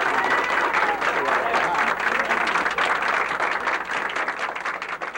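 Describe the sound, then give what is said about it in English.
A large crowd breaks into loud, sustained applause as a Republican governor arrives, a dense wash of clapping that holds steady for the whole stretch and eases only slightly near the end. “You hear the reaction of the crowd, and he is here.”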